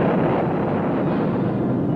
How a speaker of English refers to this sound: The ranchers worked for many hours in the gully. Then a charge of blasting powder was set in the rocks. Its mighty roar echoed through the hills.